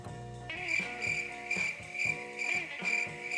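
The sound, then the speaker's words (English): Crickets chirp in a steady, high-pitched trill that pulses roughly twice a second, clear, with a soft tonal background underneath and no talking. “I'm gonna insert cricket sound effects right there.”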